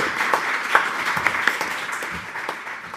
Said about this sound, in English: Give the panel a round of applause if you would, please.